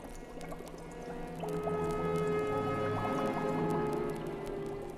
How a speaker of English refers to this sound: Welcome, Conan of Cimmeria. Come you closer and stand before my bubbling cauldron.